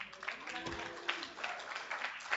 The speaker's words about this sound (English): You guys are applauding before I say what the news is, which I think actually is going to bore all of you, but just like hang with me for a little bit.